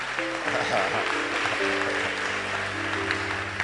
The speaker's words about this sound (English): I thought you'd clap at that scripture. It's a very powerful scripture. Your clapping is by force clapping.